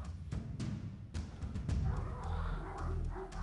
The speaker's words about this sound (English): Yeah, those fucking dogs, man. I don't know if you can hear them, but goddamn, they're fucking annoying.